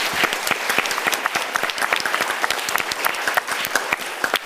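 An audience applauds a panel of speakers steadily, many hands clapping in a dense, continuous patter of sharp claps that holds at a fairly even loudness throughout, with no voices standing out.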